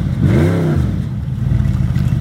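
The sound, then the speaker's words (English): A loud car engine sound effect revs, its pitch sweeping upward and back down, then settles into a rough, rumbling idle with a clattery texture before cutting off abruptly. “We haven't talked about cars in forever”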